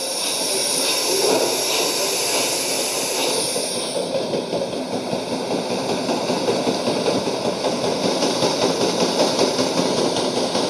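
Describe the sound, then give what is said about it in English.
A steady, rumbling paddle steamer engine chugs along with a faint rhythmic pulse under a broad mechanical hiss, fairly loud throughout, with no voices, as the boat carries passengers gently downstream. “And in the middle of this hive of industry, a pleasant moment on a boat could be found chugging you gently 5 miles downstream.”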